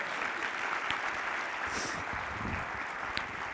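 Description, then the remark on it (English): A church audience applauding during a sermon on a Bible story about Jesus, Mary and Martha: dense overlapping claps forming a continuous wash of sound at moderate loudness, with a few sharper individual claps standing out and a faint voice or two underneath. “We can clap.”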